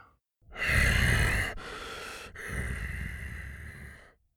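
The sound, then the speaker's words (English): A scarred, scaly creature's raspy, labored breathing, heavy: a long rough inhale, a short one, then a drawn-out wheezing exhale with a low rumble, no voices. “He could hear his raspy, labored breathing.”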